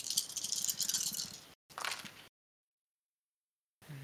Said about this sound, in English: Yeah, that'll hit, and I get to roll a lot of dice.